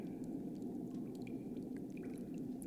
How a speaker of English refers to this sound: And from right behind you, you hear as if something surfaced from the water.